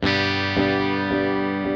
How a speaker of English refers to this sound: Here's another effect, delay, another popular one.